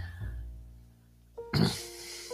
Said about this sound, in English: And the heavy breathing isn't me. That's my grand dog, Oda. Hi, Oda. Hi. She's coming over to say hi.